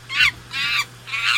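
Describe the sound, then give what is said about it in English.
A duck quack sound effect: three loud, nasal quacks in steady succession, each a brief raspy honk with short gaps between, heard alone without any talking. “I gotta have a duck on morning zoo. Was that what that was? Are there ducks?”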